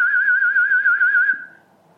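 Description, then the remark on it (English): A person whistles one steady, warbling high note with a quick regular wobble for over a second, imitating a conductor's baton swishing through the air, then it fades into quiet. No one speaks. “he didn't whistle, but I was imitating the baton moving through the air then with a...”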